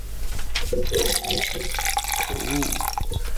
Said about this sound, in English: Yes, I'd like a rum. There we go, stop miming around it. I did pour it quite close to the mic, probably heard.